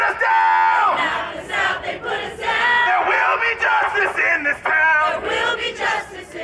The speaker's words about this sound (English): a community organizer in Atlanta, leading the crowd in song outside the Georgia World Congress Center, where the annual American Public Health Association meeting is taking place this week.